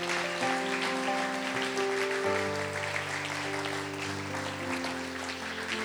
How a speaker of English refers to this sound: Come on, give the Lord a good round of applause.